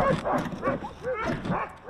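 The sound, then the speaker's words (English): A team of seven sled dogs used for tourists, not racing huskies, barks and yips excitedly while jumping and banging at their harnesses, their overlapping, rapid calls and high whines crowding together, loud and continuous with no pauses. “But already, they were jumping and banging at their harnesses.”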